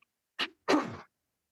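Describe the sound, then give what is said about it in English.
A throat being cleared in two harsh, raspy bursts: a short one followed by a longer, rougher one, fairly loud and with no talking around it. “Because I'm going to have to clear my throat, sorry.”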